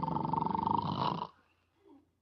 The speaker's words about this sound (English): must you start snoring as soon as you close your eyes? Snoring? Who's snoring? I'm not snoring.